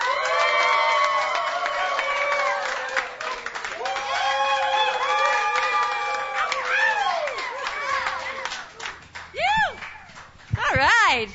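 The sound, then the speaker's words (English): A lively crowd at the YEG Live Songwriter Stage at the Hideaway cheers and whoops loudly, with overlapping shouting voices and scattered clapping throughout, ending in a few rising, excited yells. “We got a great crowd.”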